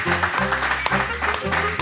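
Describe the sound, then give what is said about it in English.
Audience applause for a gentleman in the audience, a dense, steady wash of many hands clapping for about two seconds, mixed with low, sustained musical tones beneath it. “I'd like to extend the round of applause to this gentleman here”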